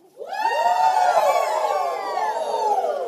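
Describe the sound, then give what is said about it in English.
A large crowd at Seacoast Vineyard church erupts in a sustained, rising cheer while doing the wave, started by the youth, many voices whooping and shouting together at high pitch, loud and continuous for several seconds with no single voice standing out. “I thank you for participating in the wave.”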